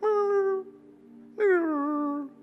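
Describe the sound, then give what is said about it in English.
A dog, Hank, whimpers twice while entangled after wrapping himself around a tree; each a drawn-out, high, whining cry that slides downward in pitch, separated by a short quiet pause, with no talking. “And you know what happens when he becomes entangled? He starts whimpering.”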